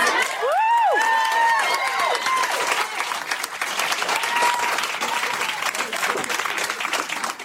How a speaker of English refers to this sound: This might be the most enthusiastic applause and cheering of the whole night. I imagine it's cathartic for a lot of the non-black parents in the audience.